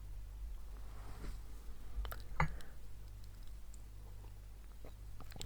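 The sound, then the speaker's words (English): Someone quietly takes a small sip of water, with soft mouth clicks and a single gulping swallow partway through, over low background hum. “Okay, little sip of water.”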